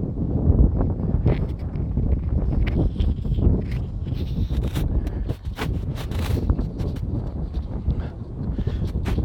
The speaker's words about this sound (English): Christ, it's windy as hell. It's so windy. I'll try to guard the microphone.